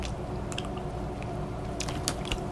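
Chewing of small crunchy Brookside chocolate-covered blueberries, with moist mouth sounds and a few sharp crunches scattered through a steady low hum, no talking.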